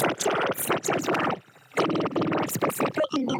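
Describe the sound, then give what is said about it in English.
A garbled, choppy voice over a phone line, its sound distorted and briefly cutting out to near silence before returning, like a call breaking up. “Yeah, there, you're breaking up again.”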